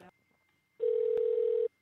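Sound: telephone line ringing tone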